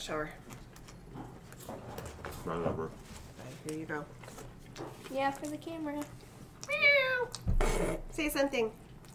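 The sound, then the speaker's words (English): A male cat meows repeatedly, several drawn-out, rising and falling cries, with soft voices and household noise underneath and a brief thump near the end. “Careful, he's gonna like jump on something. He looks so uncomfortable. Cat treats 1 to 10.”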